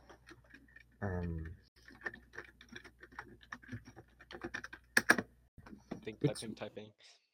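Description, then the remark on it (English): Irregular clatter of keystrokes on a computer keyboard as someone quickly looks something up, quick bursts of clicks with short pauses, and a brief wordless voice murmur near the start. “Typing.”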